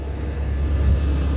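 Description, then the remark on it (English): A steady, low rumbling drone of an aircraft passing overhead, fairly loud and continuous throughout, with no voices present. “The state is stalking by a plane. And helicopters is flying in circles above the state Fontana Metrolink train station.”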